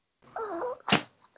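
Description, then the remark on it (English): A brief, wavering nasal whine is followed by a single sharp, breathy sneeze, fairly quiet, with no talking. “Bless you.”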